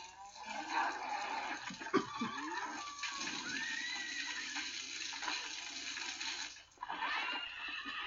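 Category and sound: animal, horses neighing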